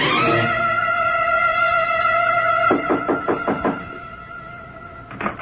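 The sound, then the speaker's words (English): A steady, loud electric door buzzer in New York hums for a few seconds as a visitor is buzzed in, then breaks into a quick rattle of clicks as the lock releases, with one last click near the end. “Wait a minute, I'll buzz the door for you.”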